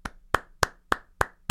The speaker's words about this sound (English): Good to clap it up. Let's clap it up for the GOAT.